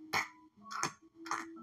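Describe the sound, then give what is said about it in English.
Three crisp clock ticks at a steady, even pace, moderately loud, with a faint tonal hum lingering between them. “Like, you understand the seconds on the clock.”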